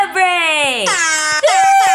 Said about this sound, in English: I bought an air horn from the dollar store a couple weeks ago. you have an air horn.